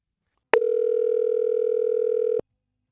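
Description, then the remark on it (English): A single steady electronic ringback tone sounds for about two seconds, starting and stopping abruptly, as hosts on the radio station Mix 94.7 place an outgoing phone call. No voices. “Well, let's call Laura and see what she says, okay?”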